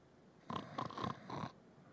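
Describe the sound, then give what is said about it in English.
A voice imitates snoring with a single loud, rasping snore lasting about a second, made of rough pulsing bursts, alone with quiet before and after. “Snoring, or sawing logs, whatever you want to call it, he's sound asleep.”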